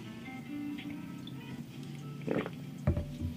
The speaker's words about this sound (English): excuse me. A sip of water. Cotton mouth.